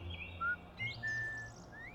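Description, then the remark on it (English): A series of thin, high whistled bird notes, short chirps followed by a longer steady tone and a rising sweep, heard alone over a soft low background hum. “Robin Hood and Little John crouched down, listening to the strange whistling.”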